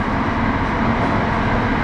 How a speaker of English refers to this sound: You are now riding live on the South London branch of the Elizabeth Line. On the purple train.